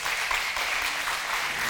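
A crowd applauds steadily, a dense wash of many hands clapping at once with no pauses, holding an even loudness for the whole stretch.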